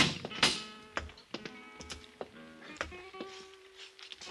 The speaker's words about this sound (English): His eyes flickered slightly as Peral and I opened the steel grill door.